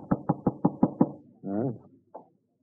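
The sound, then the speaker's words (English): Six quick, evenly spaced knocks rap on a door in a steady burst as a homicide detective calls, followed by a short questioning voice and another brief vocal sound. “Huh? Who is it? Open up,”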